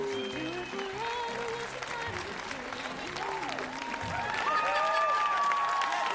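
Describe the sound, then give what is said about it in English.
A large crowd applauds steadily for several seconds at the opening of the Dr. Joe Show, dense clapping mixed with scattered cheers and voices, swelling a little louder toward the end. “A huge crowd applauding.”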